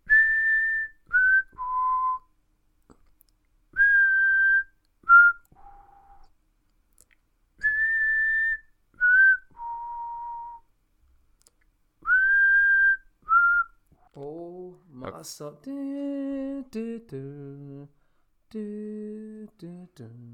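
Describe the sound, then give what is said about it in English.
Someone whistles a clear melody, the core theme of a film, in short repeated phrases, the same motif returning three times, before a voice takes over near the end with a few sung or hummed notes. “Yeah, that core theme repeats a lot in the film. It's a bit... Yeah, these are quite difficult to whistle, but we're going to keep going.”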